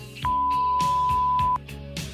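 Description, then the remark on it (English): A voicemail beep: a single steady, mid-high electronic tone lasting just over a second, sounding loudly over a busy background of other sounds before it cuts off. “Leave a message with a reason for your call.”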